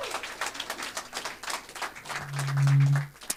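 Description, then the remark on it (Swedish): An audience applauds a team with steady, dense clapping for about three seconds, while a low sustained tone swells briefly underneath near the end. “Vi ger en applåd till det här goa teamet, va?”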